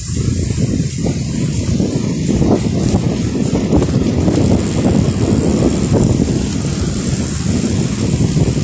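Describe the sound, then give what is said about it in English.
A loud train runs alongside with a steady, continuous low rumbling roar, overlaid by a thin, constant high-pitched whine, and no one speaks. “The train's still beside us. It's pretty loud.”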